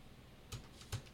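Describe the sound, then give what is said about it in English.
Two soft, separate keystroke clicks spaced a little under half a second apart, like light typing on a computer keyboard, set against a quiet, low background hush. “I appreciate, by the way, all the typing you have not been doing in this episode in the docs and distracting me.”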